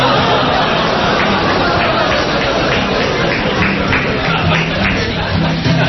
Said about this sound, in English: Thank you for the applause.